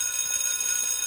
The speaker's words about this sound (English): I think the school is about out of session. The lunch bell's about to ring.